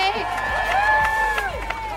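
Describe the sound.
A crowd cheers and applauds an audience member who is called up, with high rising whoops riding over a steady wash of clapping and voices, loud and sustained throughout.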